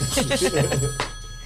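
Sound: telephone bell ringing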